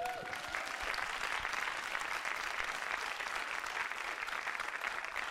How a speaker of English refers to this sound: And from the applause, I think the audience has said yes.